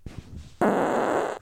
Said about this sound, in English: Not my farts. Yo, I'm stinking you guys up today.